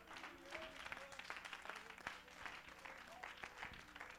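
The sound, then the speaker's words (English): A crowd claps hands steadily throughout to give God praise, a dense, continuous patter of many people applauding together, with faint voices calling out underneath. “Oh, clap your hands and give God praise.”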